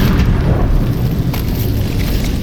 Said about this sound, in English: The floor splits. The walls crack. Pipes and support beams rip out of plaster.